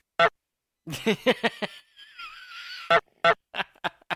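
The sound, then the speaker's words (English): A person imitates a goose, letting out a quick series of short, harsh honks, a drawn-out raspy wheeze, then a few more loud honks. “Dude, that doesn't even sound like a honk.”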